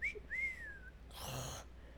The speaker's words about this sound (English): God, I go bad wolf whistles, don't I? That's all I can do.